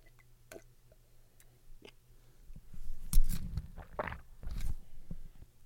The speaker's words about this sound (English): I don't know if you can hear that or not. I actually swallowed pretty loud. I didn't mean to do that.